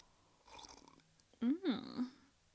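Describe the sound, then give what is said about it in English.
A soft slurping sip of tea, followed by a short voiced, rising-and-falling 'mm-ahh' sound of satisfaction, all quiet with no talking. “All right, so I'm just going to have a sip of my toy.”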